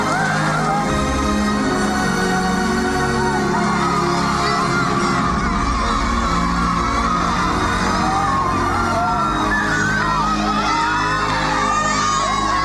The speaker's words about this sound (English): And, you know, they started shouting. They're shouting, Maji. Maji, Maji means water. They were shouting, water, water, because it was actually coming.